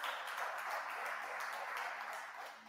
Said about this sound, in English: God, one more hand clap if you can.